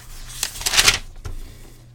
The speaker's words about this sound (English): You hear me look through the notes here.